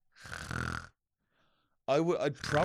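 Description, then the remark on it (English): A person imitates a loud snore: one long, harsh, rattling rumble, then a brief pause before more voiced vocal sounds with shifting pitch. “What, if the person beside me fell asleep and started snoring?”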